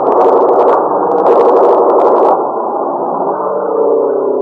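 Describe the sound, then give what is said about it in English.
A loud, continuous engine roar of an enemy airplane coming in low and fast overhead, harsh and gritty for the first couple of seconds, then easing into a steadier, slightly duller drone. No one speaks. “Airplane. Enemy plane. Yeah, coming in low.”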